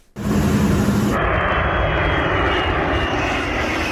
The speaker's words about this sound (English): The 2019 liftoff of the largest plane on Earth, the product of California-based Strato Launch.